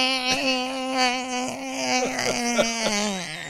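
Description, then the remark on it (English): A voice imitates the failing transmission of a 1995 Geo Metro two-door hatchback with a steady, buzzing whine held at one pitch for a few seconds, broken by several brief clicks and sputters. “That's the transmission messing up.”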